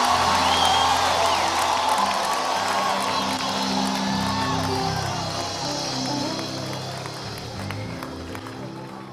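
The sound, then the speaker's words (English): A large audience claps and cheers together as a clap offering of praise to God, a dense, steady roar of applause with whoops and shouting voices mixed in, sustaining at an even, fairly loud level throughout. “Give God a big clap offering of praise.”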